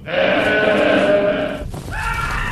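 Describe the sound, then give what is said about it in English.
A goat, Goat Squatch, lets out a loud, strained bleating scream that wavers for over a second, breaks off briefly, then starts again with a second harsh cry, with no talking. “Goat Squatch, old pal. It's good to see you.”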